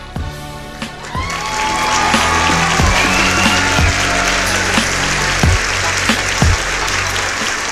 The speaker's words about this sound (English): a lot of applause this week on the KMC Sports Show